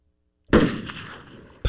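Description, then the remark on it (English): A loud gunshot sound-effect drop cracks out of silence and rolls off in a long reverberant decay, then a second shot hits sharply right at the end. “Another gunshot.”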